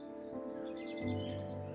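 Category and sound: bird, blackbird song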